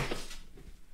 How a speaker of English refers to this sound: just fell over, knocked my energy drink into the floor, and it spewed everywhere.